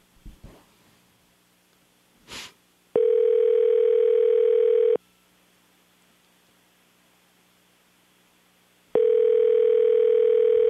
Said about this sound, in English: So we are going to call the house number now and see if we can get an answer here.